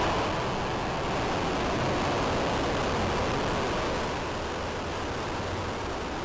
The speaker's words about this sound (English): That's the sound of SpaceX's 10th successful rocket launch on the year. Last night, a Falcon 9 blasted off from Cape Canaveral carrying the AMO-17 satellite